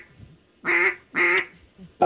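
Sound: duck call quacking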